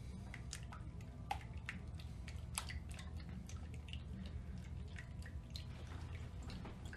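Three-quarters of a cup of coffee is poured into a thick batter containing raw eggs and beaten: steady wet squelching with irregular sharp clicks and splashes, continuous over several seconds with no talking.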